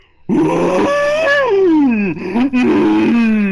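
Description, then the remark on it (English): A single loud, drawn-out scream, a human voice imitating a giant scream, lasting about three seconds, with a strained, roaring tone that dips in pitch and then rises again before trailing off. “But it echoes throughout the desert sky. This isn't anything local. This is a large scream.”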